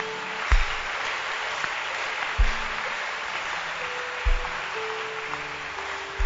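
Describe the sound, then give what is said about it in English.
An audience claps their hands in a dense, continuous wash of applause, with a deep thump roughly every two seconds and faint sustained tones running underneath. “Clap your hands.”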